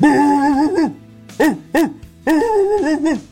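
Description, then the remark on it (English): A person imitates their German Shepherd barking angrily, voicing a sustained growl followed by two short, sharp barks and another drawn-out growling bark, loud and harmonic with a rough, throaty tone. “My German Shepherd sounds more like...”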